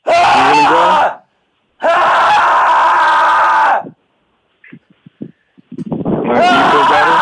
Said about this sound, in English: Did it feel good to scream or just weird? Yeah, no, it felt good. I'm a very loud person.